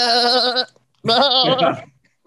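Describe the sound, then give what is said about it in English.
A person mimics a goat's bleat, with two loud, wavering 'mehh' cries separated by a short pause, with no other talking. “We need a goat face swap for me.”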